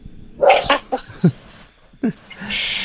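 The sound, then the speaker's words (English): A dog barks several times in short, sharp bursts, with a brief pause before a final yelp and a soft hiss trailing at the end. “The barking isn't part of the opening reading.”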